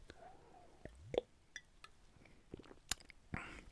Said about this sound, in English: I guess I'll take a sip of the S'mores Porter.